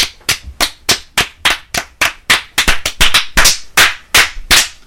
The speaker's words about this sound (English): This room is so good at clapping. It's okay. Very echoey.